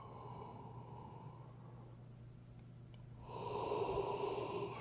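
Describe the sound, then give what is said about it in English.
A single drawn-out yawn: a long breathy intake that swells into a louder, slightly voiced exhale near the end, with no talking. “I've talked about yawning in the past, and I will not excuse myself again for yawning, and you shouldn't excuse yourself for yawning in this system.”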